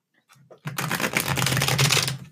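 A tarot card deck is shuffled: a brief soft rustle, then a loud, rapid riffling flutter lasting a couple of seconds, with no one talking.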